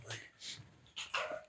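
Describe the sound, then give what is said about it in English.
A dog named Henry gives a few short barks and whimpering yips in quick bursts, with some quiet background noise between them. “Henry's barking.”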